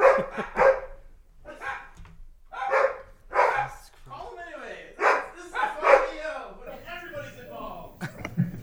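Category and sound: animal, dogs barking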